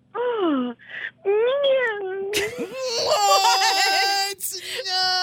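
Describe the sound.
A woman's voice imitates a cat's meow in a string of drawn-out, wavering, high-pitched cries that rise and fall, loud and continuous with brief breaks, ending in a harsher, strained yowl.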